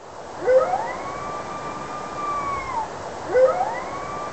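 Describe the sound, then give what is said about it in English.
A red wolf, a small wolf species of the southeastern United States, howls alone, its voice sweeping up quickly, holding a long wavering tone, then sliding down; a second howl rises right after and is cut off. “And to compare that, this is the howl of a red wolf, which is a much smaller species from the southeastern United States.”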